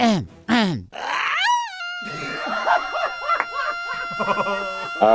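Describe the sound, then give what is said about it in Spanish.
A voice imitates a police car siren with a few rising and falling wails, ending in a long, high, descending glide, followed by a noisy stretch of vocal sounds and murmuring. “Yo puedo ser la de sirena, pero no como la de Disney, sino la sirena, o sea, el ruido que hace el carro.”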